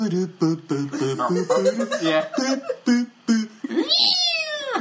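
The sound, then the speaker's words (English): A cat meows over and over, fairly loud: a quick run of short, chirpy mews, then a longer, drawn-out meow that rises and falls at the end. “Like cat sounds in the background.”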